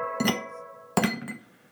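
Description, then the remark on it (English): Two heavy clinks ring out about a second apart as large ice cubes drop into a glass while a drink is being made, each with a bright ringing tail and a smaller rattle after the second. No talking. “Big ass ice cubes?”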